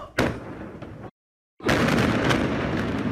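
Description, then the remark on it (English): A massive explosion in Tianjin in 2015 booms loudly, opening with a sharp blast, then a brief silent gap before a sustained, roaring rumble carries on through the rest. “Okay, these people, I mean, look at this explosion. I mean, this thing was massive.”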